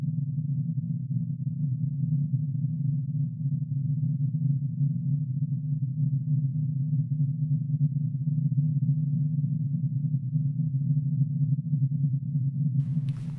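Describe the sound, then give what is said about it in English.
A sonification of the sun's internal oscillations (helioseismology), whose natural period is about 5 minutes, sped up into the audible range of several hundred hertz: a steady, low, buzzing hum that drones evenly with a faint warbling texture and no voices, ending in a brief crackle. “So we sped it up so we can hear it, and you can hear what the sun is doing inside.”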